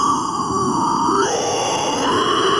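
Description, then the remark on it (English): A throat-singing growl: one steady, loud, rough drone with buzzing overtones that shifts pitch once about halfway through, held without a break and with no talking over it. “Impressed with the growling. Like, that's like next level throat dude, singing.”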